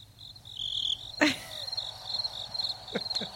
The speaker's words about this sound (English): Now we have to wait for the crickets.